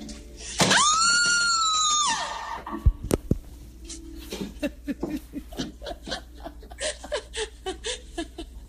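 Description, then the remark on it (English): In a haunted hallway in Georgia, a woman lets out a loud, sustained high-pitched scream for over a second, then beats a few sharp bangs on a door with people on the other side, followed by a stretch of breathy, rhythmic laughter. “She just beat on the door that these people are on the other side of and started screaming.”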